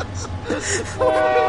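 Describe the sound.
A passing Amtrak train rumbles loudly past a spot where a road crosses the railroad, then a sustained, steady horn blast sounds over the noise. Voices are faintly audible in the background.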